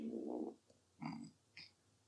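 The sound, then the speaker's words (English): A loud, close-up, low buzzy fart-like noise blown right into the microphone, followed after a pause by two shorter, raspier bursts, with no talking. “You gonna fart in the mic for me? Oh, because it sounded like foot like he farted.”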